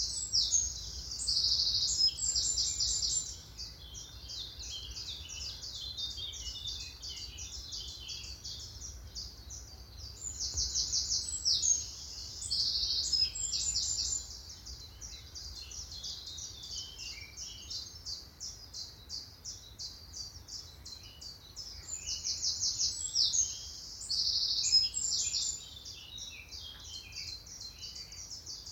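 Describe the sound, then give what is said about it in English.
A lively outdoor birdsong chorus of chiffchaffs, wrens and a blackcap: bright, rapid trilling songs burst out every few seconds over steady chirping and twittering, with the blackcap's softer, rising and falling fluting notes in the background and no voices. “There definitely were chiff-chaffs, definitely were definitely wrens, but there was also a black cap, sort of fluting notes in the background, which were sort of just rising and falling”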